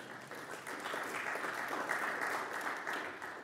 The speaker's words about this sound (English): It might have been a pity clap